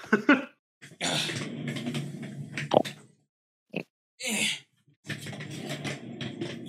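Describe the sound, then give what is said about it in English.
The pet Diego, a dog, growls in several rumbling bursts, a long stretch near the start and another at the end, with short snorts and pauses between them. “I just hear it. I hear it growl.”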